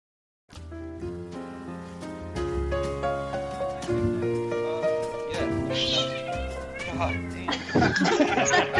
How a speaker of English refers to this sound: Wait, was that your cat,